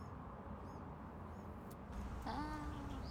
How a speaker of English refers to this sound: Oh, birds.